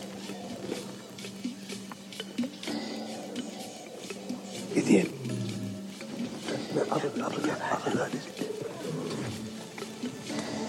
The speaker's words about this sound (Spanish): Le chacal appelle parce que les lions sont proches. Está siguiendo las huellas de los leones.